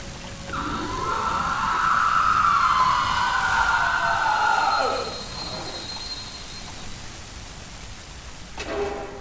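Steady hiss of rain over the rumbling clatter of a moving train, with a loud, wavering siren-like wail rising and falling through the first half before the noise settles back.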